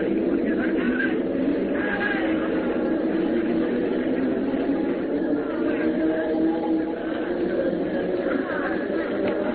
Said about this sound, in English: Look, here comes our train